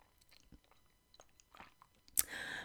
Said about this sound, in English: I just need to take a sip of tea.